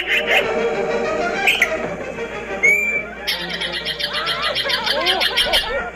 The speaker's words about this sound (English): Today's featured feathered friend and the inspiration for TV's Heckle and Jekyll, the yellow-billed magpie.